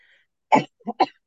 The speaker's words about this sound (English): I told you I was not going to have an edit. Gosh darn it, and that cough was coming. Yeah, thanks, guys. You can edit out that cough. Sorry.